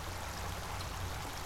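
Steady, continuous rush of flowing water, like a stream, with a broad even hiss and low rumble throughout and no voices.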